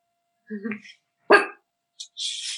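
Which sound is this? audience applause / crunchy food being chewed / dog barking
dog barking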